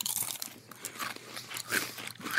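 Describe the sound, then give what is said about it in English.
Crunching on crisp chicken-skin chips, a steady run of dry, crackly bites and chews with sharp bursts throughout, fairly quiet with no talking. “They're made of chicken, and the bag is a big red chicken or rooster on it. It's a chicken chip.”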